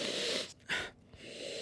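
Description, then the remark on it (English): A person sniffs a scent sample in a cup: a long drawn inhale through the nose, a brief pause, then a sharper, forceful sniff followed by more steady airy breathing, with no talking. “The force behind the sniff.”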